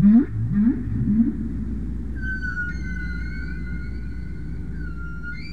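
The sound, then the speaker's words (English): Humpback whale song recorded underwater off Bermuda in 1964 by Frank Watlington: a few low, swooping moans give way to a long, drawn-out high wail, all over a constant rumbling hiss of ocean noise. “Again, we were just listening to the original 1964 recordings taken by Frank Watlington of Humpback Whales off Bermuda.”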